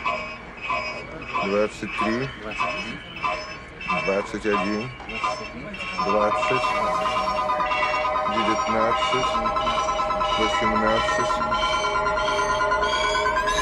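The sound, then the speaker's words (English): A film's electronic beeping of a probe comes in quick pulses that speed up, then merge at about six seconds into a steady, continuous high tone that holds loudly to the end, with a low rumble underneath. “And then when the beeping gets too fast, then it becomes this different sound.”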